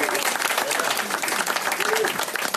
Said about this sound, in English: Let's have a little round of applause for the great people here at the Gateway Diner.